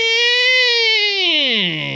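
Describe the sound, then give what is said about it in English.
A voice imitates a nerd screech: one loud, strained, high-pitched nasal wail held steady for about two seconds, then sliding downward in pitch as it fades out. “Could you make the nerd screech sound?”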